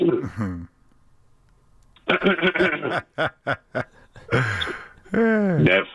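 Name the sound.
throat clearing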